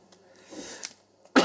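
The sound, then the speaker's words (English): A short, sharp breathy burst midway, then a louder, harsher cough at the very end from a person being interviewed for Radio Mayapur, with quiet room noise between. “I'm sorry, I cough.”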